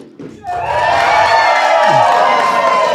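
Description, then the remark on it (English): After a brief quiet start, an audience at a Standard of Truth tour event, prompted to cheer, breaks into loud, sustained cheering, a dense wash of many voices with high whoops that holds steady to the end. “Yeah, it took a few seconds for them to cheer.”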